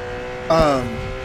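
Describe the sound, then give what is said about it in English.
A voice imitates a car's tires squealing as it speeds and swerves through traffic: one short, loud screech that bends downward in pitch and fades after about a second, over a faint steady hum. “He's like swerving through traffic.”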